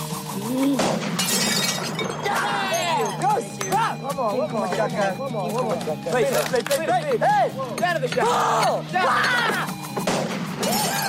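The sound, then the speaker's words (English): Several loud, sharp crashes of plates shattering burst out at irregular intervals, each a sudden bright smash, over continuous warbling, chirpy vocal sounds running underneath throughout. “the way the plates break is as if a shotgun shot”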